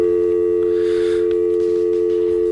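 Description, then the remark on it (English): A telephone tone drones on after the other person hangs up on a live on-air call made from a mobile phone: a loud, steady electronic hum that holds unbroken for a few seconds, with faint background noise and no voices. “Oh, she always hangs up. She's gone, on me.”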